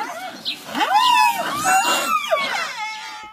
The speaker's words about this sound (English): So one of the cutest ones is a little moo that the babies will make to their mom.